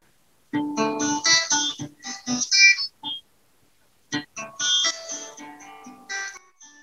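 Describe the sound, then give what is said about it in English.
A person imitates a dog barking, letting out a string of harsh, voiced yelps in two loud bursts separated by a short pause. “That's why I bark at them instead.”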